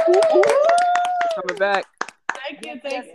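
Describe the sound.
Quick, irregular hand claps spread across about three seconds, with voices whooping and cheering over them, then a brief pause before a few more claps and calls.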